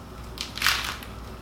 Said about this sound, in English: Yeah, that works. I'm still not getting a lot of queso from it, but the chip is a nice savory chip. Good crunch, good flavor.